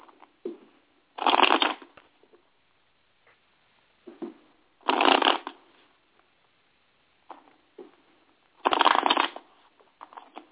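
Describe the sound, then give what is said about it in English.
Tarot cards are shuffled in three brisk riffling bursts a few seconds apart, with faint handling rustles between them and no talking. “Oh, gosh, man, because as I shuffle, I'm, like, picking up on that, and I'm just laughing on the inside, like, good Lord.”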